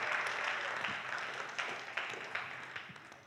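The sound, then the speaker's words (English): A crowd applauds the sound crew with dense, steady clapping that fills the space, then thins out into scattered individual claps toward the end. No one speaks. “Let's give them a round of applause.”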